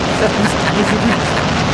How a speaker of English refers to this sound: Ooh, it's still going. That must be a long jet.